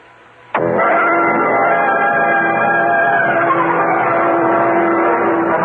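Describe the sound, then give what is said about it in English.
A car engine roars to life abruptly and keeps running loud, its droning tone shifting slightly as Cal Hendricks's car pulls away to drive out to the Island Yacht Club on City Island, with no voices. “Cal Hendricks and I got into his car and we drove out to the City Island of the Island Yacht Club.”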